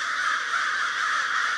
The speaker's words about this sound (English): If you hear a ruckus and spot several crows circling and swooping toward a tall conifer, it's a good bet that there's a raptor tucked in the tree, a hawk perhaps, or an owl.